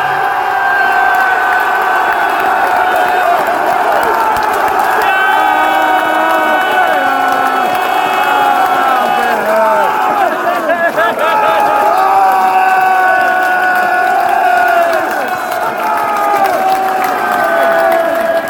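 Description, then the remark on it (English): A football crowd cheers loudly and steadily throughout, a dense roar of shouts and whoops, with the final whistle sounding in high, piercing tones amid the celebration as the Albion secure an away win in London. “As you may have guessed, that was the final whistle.”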